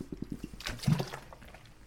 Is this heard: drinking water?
yes